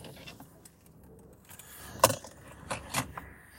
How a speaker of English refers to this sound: Did you drop your vape? Keys.